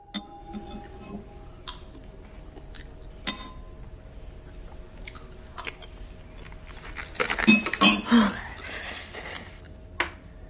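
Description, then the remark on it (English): A woman chews on glass in soup: sparse clicks and clinks lead into a loud burst of crunching and grinding, then a final sharp tick, with no talking. “So when she's chewing on glass in the soup, where did that come from?”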